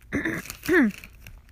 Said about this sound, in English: Let me clear my throat. Sorry.